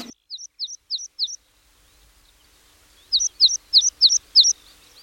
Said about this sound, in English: Tweet of the Week is meadow pipit. This tiny, streaky little bird is a speciality of our uplands